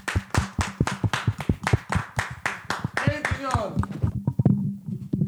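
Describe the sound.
A steady run of sharp hand claps in tribute to Kobe and his career, about ten in quick regular rhythm, followed by a voice speaking and a few scattered claps continuing underneath toward the end.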